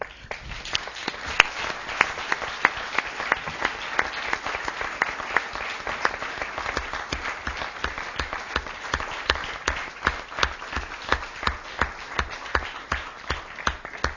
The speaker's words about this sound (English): Well, the audience has already applauded, but I just want to thank you very much for a very rare lecture, an analytical lecture, a visionary lecture, and an entertaining lecture.